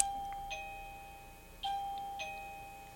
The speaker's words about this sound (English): Oh. I think someone just left. Oh. I know there was another person in the building, but... Okay. to the listeners who, if they couldn't hear that, some sort of little ding-a-ling bell just went off.